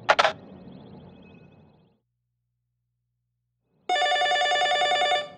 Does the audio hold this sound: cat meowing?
no